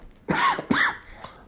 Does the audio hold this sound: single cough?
yes